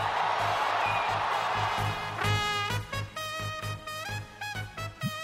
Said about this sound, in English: Swinging a drive toward right center. Back goes Robert. Back near the stands. That ball is gone. A game-winning home run for Chris Morel. Can you believe it? Listen to this crowd.